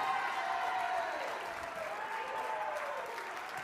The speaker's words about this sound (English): Come on, let's take 30 seconds. Clap your hands one more time. Celebrate it. Oh, you sound good.